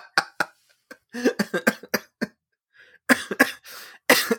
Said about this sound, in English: Excuse me. I'm starting to cough. I knew this was inevitable.